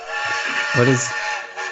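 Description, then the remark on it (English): A steam train whistle blows in one sustained, loud, hissing blast with strong harmonic tones, swelling briefly in the middle before holding steady. “Oh, the train's coming in.”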